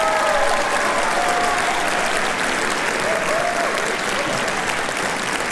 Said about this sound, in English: How about a big round of applause for the symphonic band that just performed?